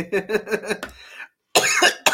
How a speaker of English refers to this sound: If you ain't coughing, you're just smoking some weak shit, even when I hit the blunt.